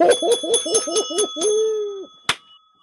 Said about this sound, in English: how's that bell working out for you?